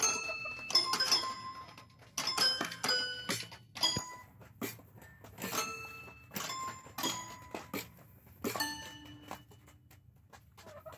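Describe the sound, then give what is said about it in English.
Two chickens pecking, one at piano keys and the other at drums: scattered, irregular piano notes ring out at varying pitches amid uneven percussive thumps and taps, with no rhythm or melody and no talking. “So yes, hitting the lights on the piano is quite a feat, but this is what it sounds like when a chicken pecks at a piano while its chicken friend pecks at some drums.”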